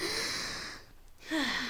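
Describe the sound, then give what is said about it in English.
A slow, deep breath: a long airy inhale, a brief pause, then a louder, breathy exhale that ends with a slight sighing tone. No talking. “That's deep breathing”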